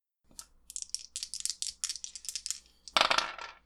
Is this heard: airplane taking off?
no